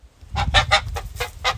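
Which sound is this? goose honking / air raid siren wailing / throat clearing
goose honking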